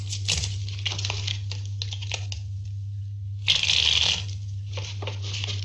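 A deck of playing cards is shuffled in quick, papery riffles, pausing briefly before a louder, sharper burst of shuffling and a few final flicks, over a steady low hum.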